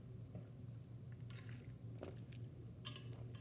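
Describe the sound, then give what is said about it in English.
Quiet mouth sounds of someone taking a drink of water: a few wet slurps and swallows spaced about a second apart over a low steady hum, with no talking. “I had to take a drink of water.”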